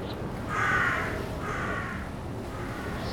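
A crow caws twice, harsh and raspy, the first call louder and longer than the second, over a steady rushing background like wind.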